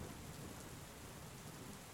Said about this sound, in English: As the two of you climb onto this rooftop, watching your step as the rain continues to beat down.